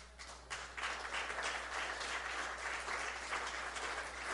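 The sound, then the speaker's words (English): A crowd at a church sermon claps hands for Jesus in a sustained burst of applause, steady and fairly loud, with no voices standing out above the dense patter of many hands. “Oh, somebody clap your hand for Jesus.”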